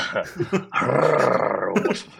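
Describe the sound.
A person imitates a cat's purr with a steady, throaty rumble lasting about a second, after a few short vocal sounds, made when asked to woof like a dog, while recording at midnight.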